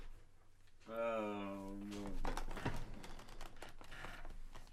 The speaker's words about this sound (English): Oh, no. That's the squeakiest chair I've ever heard in my life.